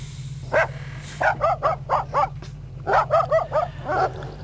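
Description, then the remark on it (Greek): A dog yaps in quick bursts, a single bark followed by rapid clusters of three or four sharp barks, over a steady low hum. “Από δριοκολάπτες πάμε στα σκυλιά.”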